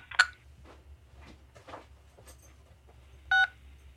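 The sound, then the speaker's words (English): Two short telephone keypad tones from pressing 6 on a phone keypad during a call to Pet Brands' automated menu, one near the start and a slightly longer one near the end, each a steady two-pitch beep over a low background hum with no voices. “I press 6 to hear a dog bark.”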